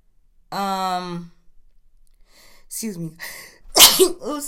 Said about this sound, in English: Excuse me. Oh my God, I never sneeze on I'm trying to pod.